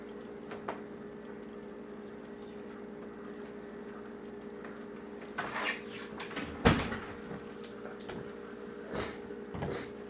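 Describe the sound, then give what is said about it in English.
Against a steady low hum, someone struggles to open a door, rattling and jostling it in a few bursts, with one sharp, loud clunk midway and more scraping knocks near the end. “Are you having trouble with the door?”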